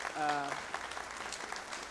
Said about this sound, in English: But for everyone, we'll go ahead and give people a round of applause. And if they're here, that's great. And if not, then that's fine too. We're still clapping for them in spirit.